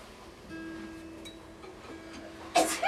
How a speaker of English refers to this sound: Bless you. It's a great sneeze.